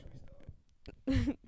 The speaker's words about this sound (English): One yawn.